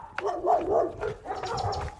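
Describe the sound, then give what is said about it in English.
Several dogs, big ones and little ones, bark in overlapping bursts at street corners in El Paso during a morning run, a mix of deeper barks and higher yips carrying on steadily for a couple of seconds with no talking. “Dogs.”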